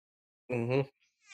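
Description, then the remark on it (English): A cat gives a single short, clear meow, followed by a brief pause and the faint start of another sound, with no one talking. “Hello, cat.”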